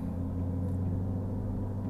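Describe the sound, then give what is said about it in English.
A steady, low engine rumble and road hum from inside a moving car as a near accident happens a couple of cars ahead, constant and unbroken for the whole moment, with no voices and no horns or screeching tires. “whoa, almost had a car accident there. Not me, but a couple cars in front of me.”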